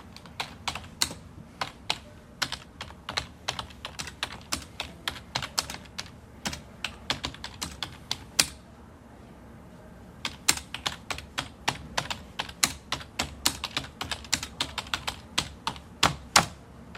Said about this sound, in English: And towards deadline, all of the people on typewriters, there would be this rising sound, and then boom, the deadline, and it was over.